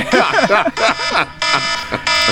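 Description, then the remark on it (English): An electronic alarm beeps in repeated harsh bursts, loud, with a steady pulsing rhythm over roughly two seconds; voices seem to be talking underneath it. “I call foul on that alarm, bro.”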